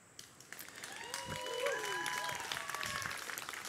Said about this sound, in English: Now, I need you to stop clapping, because that's not what we're intending here.